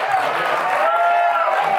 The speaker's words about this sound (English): Also, I love how they clap for all of this when all these people clapping would shit their pants in a situation of violence.